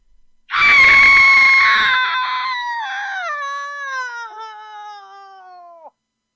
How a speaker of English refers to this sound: I recorded a variety of screams. Let's listen, shall we?